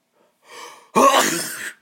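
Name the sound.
a sneeze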